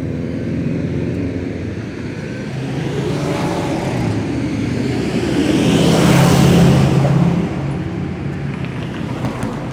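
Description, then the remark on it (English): Steady roadside traffic noise with lots of cars passing, one vehicle swelling louder as it rushes past before the broad rumble settles back to a constant wash. “lots of traffic.”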